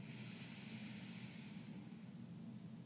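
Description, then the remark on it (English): A faint, airy inhale drawn slowly through the nose during a guided breathing exercise, its hiss fading out, over a steady low background hum with no talking. “Keep going with your breath. In. Out. In. Out.”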